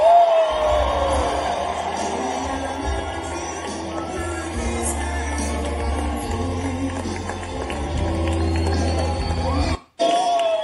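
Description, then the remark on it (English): A dense, continuous roar of a large rally crowd in Georgia cheering and shouting as President Donald Trump takes the stage, steady and loud throughout, with a brief sharp cutoff near the end before the noise resumes. “They just go crazy over him.”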